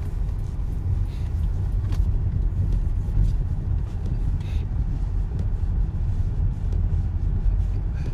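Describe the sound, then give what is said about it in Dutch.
A car drives slowly along a loose, sandy road behind cyclists, its low engine rumble steady throughout, with some wind buffeting mixed into the continuous drone. “Deze auto rijdt rustig achter jullie aan, zodat je niet al dat zand en stof in je bakkes krijgt.”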